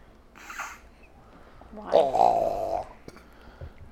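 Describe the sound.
A person imitates a creature burping with their voice: a short vocal noise, then a louder, drawn-out croaking belch lasting nearly a second, against a quiet background.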